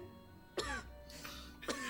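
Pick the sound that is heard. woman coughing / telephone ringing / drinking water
woman coughing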